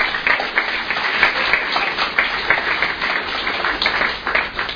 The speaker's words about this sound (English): But before we get started, my wife is here, and today is our 19-year anniversary, so I'd like her to stand up, and I'd like you to give her a round of applause.